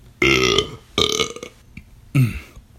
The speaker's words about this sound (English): And I have to burp.